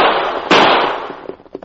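A single sharp gunshot, fired at a man riding on horseback along a trail at the edge of a bluff over a river, cracks out of a steady hiss, its loud report trailing off into a decaying rumble, followed by a few faint scattered pops. No one speaks.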